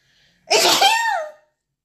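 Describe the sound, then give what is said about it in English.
A single loud sneeze bursts out after a faint intake of breath, a sharp explosive blast that trails off with a voiced, wavering tail in under a second. “Ooh, hold on, y'all. I gotta sneeze.”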